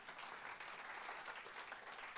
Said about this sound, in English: Is that not a cool answer? Yes. Go ahead and clap. That's right.